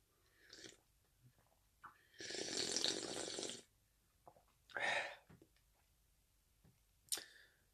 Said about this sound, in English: Finish my biscuit now. Take a sip of my tea.